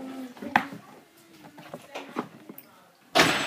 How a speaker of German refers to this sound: Kannst du bitte die Tür zu machen, bitte?